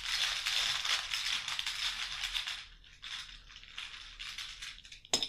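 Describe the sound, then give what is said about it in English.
Small hard game tokens are shuffled in a bag during a card game, making a steady rattle and clatter that eases briefly midway, then ends with a sharp click. No one speaks. “You can hear me shuffling it.”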